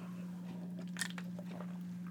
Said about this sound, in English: Let me take a hit of water.